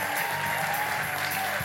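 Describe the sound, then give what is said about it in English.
Steady audience applause for the helpers at a church Christmas pageant fills the whole stretch, a dense wash of many hands clapping at once, fairly loud and continuous with no talking over it. “Let's just give them a round of applause for all their help hurting kids and stuff.”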